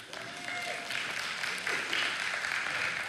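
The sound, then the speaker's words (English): An audience breaks into steady applause, a dense, continuous patter of many hands clapping at a moderate level for a few seconds, with a faint murmur of voices underneath. “And on our, by the way, you don't have to clap because first service did.”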